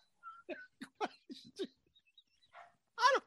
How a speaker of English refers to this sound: There's a fucking barking dog outside. It's driving me nuts. I'm like, it's like Summer of Sam. Would you please shut the fucking dog up?